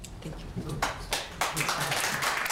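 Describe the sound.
Audience applause that starts with a few scattered claps, then swells into a dense, steady round of clapping, with some voices murmuring underneath.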